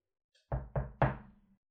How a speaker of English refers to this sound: Red ran to the woodcutter's house and knocked on the door.